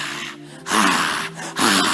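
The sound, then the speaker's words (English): A person imitates heavy panting: loud, breathy huffs alternating with softer voiced inhales in a steady rhythm, like a thirsty deer panting as it approaches water. “And when a deer is approaching water, you can hear the panting.”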